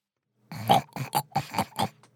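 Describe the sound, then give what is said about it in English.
A pig oinks through a walkie-talkie in a quick series of about six short, snorting grunts, each a brief nasal burst, with no talking alongside. “A series of oinks came from the walkie-talkie.”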